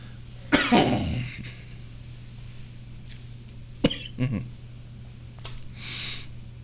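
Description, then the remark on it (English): A loud fake cough burst rings out, then after a pause a second harsh cough, now real, with a short follow-up, ending in a throat-clearing breath; a steady low hum runs underneath throughout. “Disclaimer, fake coughing leads to real coughing.”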